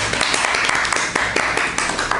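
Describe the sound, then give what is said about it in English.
Steady hand clapping, a string of sharp claps landing roughly every quarter second over a dense, noisy wash, with no talking. “So we need a clap.”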